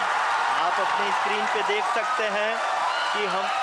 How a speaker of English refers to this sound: Cheers and applause at Mission Control in the southern Indian city of Bengaluru. People are applauding. As India's Chandrayaan 3 lander successfully touched down near the lunar South Pole.